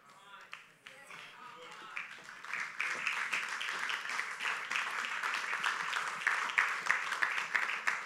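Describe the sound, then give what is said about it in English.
An audience bursts into clapping for Jesus, starting with a few scattered claps and swelling into steady, dense applause that stays loud through the end. “You know, you're clapping. You're clapping for Jesus.”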